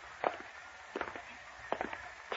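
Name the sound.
footsteps walking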